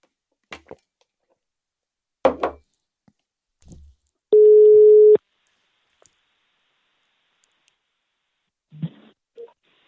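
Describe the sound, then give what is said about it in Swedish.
A single steady telephone ringing tone sounds for about a second while a call is placed to an oncologist, surrounded by scattered clicks and handling noises, with no one talking. “Hej Fredrik, det är Mark som ringer”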